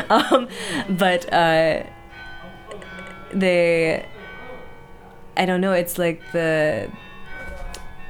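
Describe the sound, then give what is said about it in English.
A bell chimes the hour in several sustained, ringing phrases with pauses between them, while people talk quietly underneath. “It's gonna be the longer bell too, because it's the hour.”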